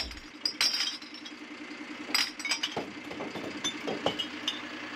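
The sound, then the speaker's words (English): A household recycling collection truck in South Northamptonshire idles with a steady low rumble while glass bottles, sorted by colour into compartments in the truck body, clink and clatter against each other in irregular bursts, some sharp crashes standing out. “When necessary, the side of the truck is raised and the content is tipped into compartments within the body of the vehicle.”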